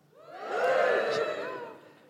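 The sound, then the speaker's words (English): An audience gives a brief, moderate cheer after being asked to cheer if they are middle class, many voices whooping together, swelling quickly and then tapering off over about two seconds. “Right, give me a cheer if you're middle class.”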